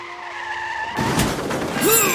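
A car's tires give a sustained, high-pitched screech for about a second, then cut off into a loud, noisy crash as the car crashes into someone, followed by a rumbling, clattering aftermath and a brief shrill squeal near the end.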